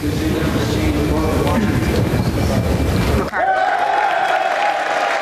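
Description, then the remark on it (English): A large crowd gives a standing ovation, cheering and applauding in a loud, dense roar for about three seconds as a vote flips during a congressional vote, then the sound cuts off abruptly into a steady, sustained tone with lighter background noise. “I wanted to play the moment there that you had your vote, and each flip of a vote had a standing ovation mostly throughout the day.”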